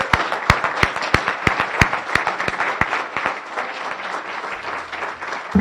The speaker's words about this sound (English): a round of applause for the Palo Verde High School Honor Guard.